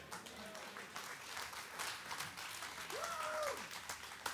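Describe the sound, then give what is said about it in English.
An audience claps steadily for several seconds, a dense, moderately loud patter of many hands, with a single voice briefly calling out over the applause near the end. “Y'all clap because I said I'm going to wash the heck out of the brain.”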